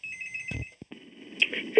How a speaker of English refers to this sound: Like, people call and ring once, and then they're like, screw it. Maybe it's been ringing all this time.